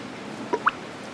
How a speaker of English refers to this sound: I can see the drip coming through the ceiling onto your forehead. Oh, that's what that is.